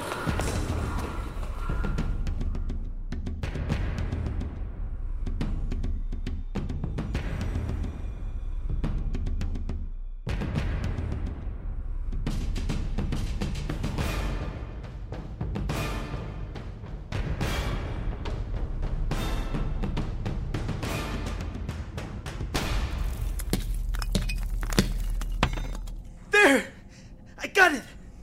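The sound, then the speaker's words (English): Heavy, irregular hammer blows pound away to widen an opening through glass, amid cracking and crunching glass, ending in a few sharp, bright shattering bursts, with strained human sounds underneath. “Still not big enough. Keep hammering.”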